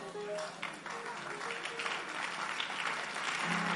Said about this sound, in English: Oh, you don't know what your clap offering is doing. You are driving some demons from our land. We are putting all of them into the sea.